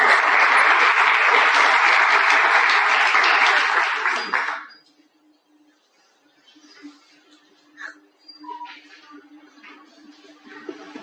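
A room full of people claps loudly and steadily for about four seconds at the start of a panel discussion, then the applause cuts off abruptly, leaving quiet room noise with faint scattered sounds.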